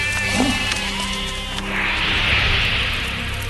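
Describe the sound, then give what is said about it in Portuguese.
Sheep and goats bleat in a brief, wavering burst, their calls overlapping against a steady rustling background that swells into a soft hiss as the bleats fade. “Pegaram também as suas ovelhas e cabras, o seu gado e todos os seus bens.”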